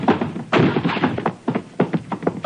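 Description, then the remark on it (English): A locked door is battered and forced open: a quick series of heavy, irregular thuds and cracking impacts with rattling in between, loud and with no voices. “Okay, Giraud, let's hit the door.”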